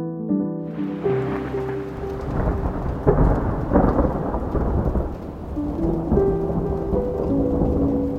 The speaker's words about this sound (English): As the storm got closer, the lightning became more frequent. It was hard to tell which clap of thunder belonged to which flash of lightning. They got louder too.